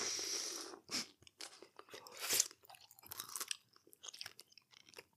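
Crunchy chewing of food, with a burst of loud crisp crunches followed by irregular, fainter bites and chomps in an uneven rhythm, with no talking.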